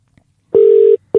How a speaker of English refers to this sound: but we'll try to see if he's online. Let's see if we can get him, and we'll ring him right now.